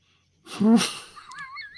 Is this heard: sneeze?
yes